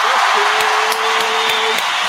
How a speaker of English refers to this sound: Let me go ahead and get the round of applause together for 583.